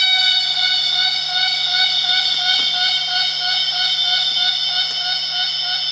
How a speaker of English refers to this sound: This sound comes from the Empress cicada, considered by scientists to be the largest of the world's cicada species. The wingspan of this magnificent bug exceeds 15 cm.